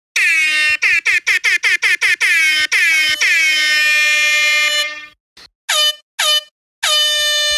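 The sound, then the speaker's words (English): A small motor scooter horn in a recording studio honks loudly: a quick string of short, buzzy beeps, then a long sustained blare, followed by a few more brief toots, with no voices. “apparently there is a small motor scooter in the recording studio with you.”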